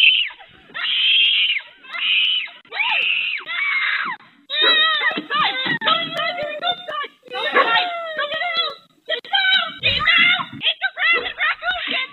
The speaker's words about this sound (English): Daughter appears to be about 5 years old, and the mom went right into action. The doorbell cam caught it. You know, you see this all the time now. A blood-curdling scream, so the mom comes running out the front door.